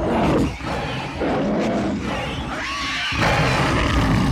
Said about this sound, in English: 19 points of damage strike this creature, and you now hear a scream from it that is certainly not human.